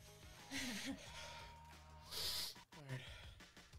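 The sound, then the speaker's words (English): Heavy, labored, hyperventilating breathing, with two loud noisy breath bursts a second or so apart, mixed with murmuring voices and vocal sounds. “I think I'm breathing weird, yeah, right? Hyperventilating.”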